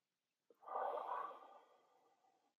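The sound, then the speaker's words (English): A single slow, soft breath inhaled through the nose on a 4 count during a 4-7-8 breathing exercise, swelling quickly and then tapering off over about two seconds, with no talking. “So that's 4-7-8 breathing.”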